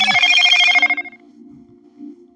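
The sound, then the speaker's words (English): A phone rings with a single bright, trilling burst of about a second, fairly loud, then cuts off and fades, leaving only a faint low hum. “Excuse me, I cannot keep my phone off of Do Not Disturb because people keep telling me they're trying to reach me and it's not going through.”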